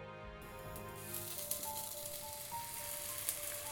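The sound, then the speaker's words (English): Beef and vegetables sizzle in a frying pan, a steady, fairly quiet hiss dotted with small crackles and pops, over a faint low hum, with no one speaking. “The sound of a sizzling pan, the smell of cooking food, isn't something unusual to find in a restaurant.”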